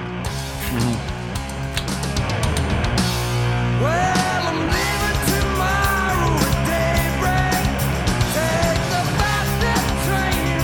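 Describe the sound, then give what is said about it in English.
A loud, dense rock cover version of an older song with driving drums and guitars, and a male singer's voice rising, bending and cracking a little over the band after the first few seconds, steady throughout. “We get to the singing.”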